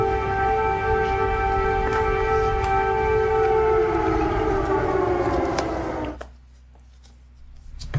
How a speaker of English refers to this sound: Note the air raid sirens in the background. What's strange is there didn't seem to be any air raids in Kiev this morning. We checked.